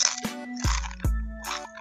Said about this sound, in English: All right, so the first thing I'm going to do is eat one more chip.